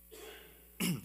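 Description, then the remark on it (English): A quiet, breathy pause gives way to a single short, forceful cough near the end, with no talking. “which, by the way, excuse me, let me cough.”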